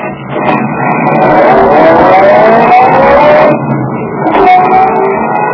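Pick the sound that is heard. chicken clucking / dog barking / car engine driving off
car engine driving off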